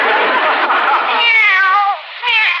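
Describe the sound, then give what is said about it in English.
A kitten lets out a long, drawn-out meow that rises and wavers, then a shorter second meow after a brief pause, both loud with no one talking. “Lately, that cat's been as jumpy as a person.”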